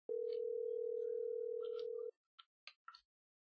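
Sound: phone call ringing tone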